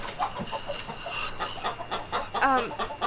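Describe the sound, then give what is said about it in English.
Agitated chicken clucking: a rapid string of short, nasal calls, ending in a louder, drawn-out squawk over a steady background hum. “You wanna call at me, huh? I can do it too!”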